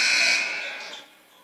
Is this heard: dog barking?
no